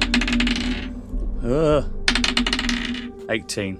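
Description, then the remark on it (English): Dice clatter across a table in two rapid bursts of sharp, bright clicks and rattles, separated by a brief wavering tone, with a few scattered taps at the end. The dice are being rolled for a stealth check in a tabletop game. “Okay, roll your stealth check because you've moved, and that's your action.”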